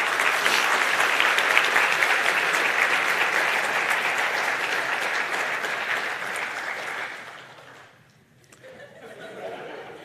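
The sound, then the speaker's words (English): A crowd applauds steadily with dense, even clapping for about seven seconds as participants go back to their seats, then the applause fades out, leaving faint murmuring and a few scattered sounds. “Come on, give a clap.”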